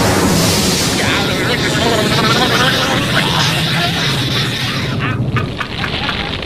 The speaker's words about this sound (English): I only hope this storm passes quickly. This lightning can be extremely dangerous.